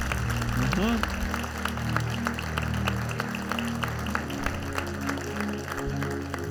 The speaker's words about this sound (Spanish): vamos a dar un aplauso fuerte a estos hombres de Dios.